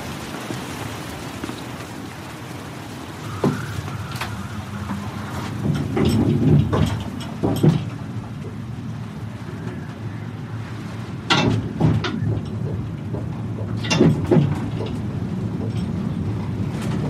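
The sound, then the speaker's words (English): A steady windy rush with low rumble, broken by scattered clanks and creaks as a cable car rocks back and forth, swaying 50 meters over the ocean; no one speaks. “The cable car rocks back and forth, swaying 50 meters over the ocean,”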